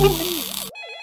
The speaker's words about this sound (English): Listen to those phones play. Such a beautiful sound